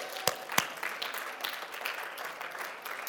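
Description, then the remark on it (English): An audience claps their hands together in praise to God in a steady, dense wash of applause, with a couple of sharp, louder claps standing out at the start before the clapping settles into an even patter. “Would you clap your hands and give God just a great big praise?”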